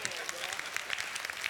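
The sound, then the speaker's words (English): A crowd claps together, producing a dense, steady patter of many hands at moderate volume. The sound carries the roomy texture of a large audience and stays even throughout the short stretch. “Is that the weakest clap hand we can get?”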